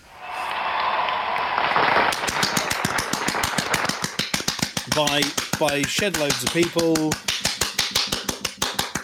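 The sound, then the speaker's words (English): After a brief rush of noise, one person claps steadily and quickly as a drum roll before a charity fundraising total is announced, in a long even run of sharp slaps while someone speaks over the clapping. “You've got the clap now.”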